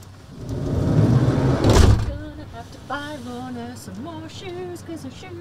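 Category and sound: household object, door being closed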